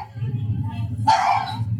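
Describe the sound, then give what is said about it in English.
A short, excited burst of bird dogs barking rises midway, fairly loud, over a steady low rumble that runs throughout. “And some dogs, these bird dogs are losing their minds.”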